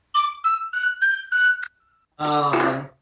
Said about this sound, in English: I have a little, the old classic little Irish tin whistle.